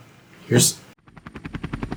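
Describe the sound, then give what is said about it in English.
A short rushing burst gives way to the rapid, steady chop of helicopter rotors overhead, thumping in a fast even rhythm that grows slightly stronger as it continues. “You hear some rotors above you, like a helicopter.”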